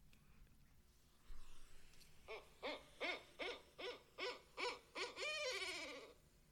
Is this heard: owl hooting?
yes